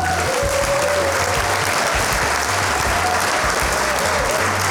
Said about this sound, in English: Claps all around, buddy.